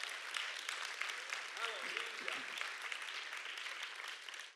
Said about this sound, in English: Someone clap your hands to the Lord this morning.